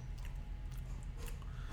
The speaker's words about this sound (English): Maybe we're supposed to fucking chug it. Let's fucking chug this shit.